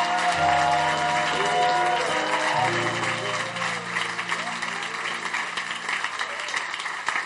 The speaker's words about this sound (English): You may go back to your seats. Clap for them as they go back.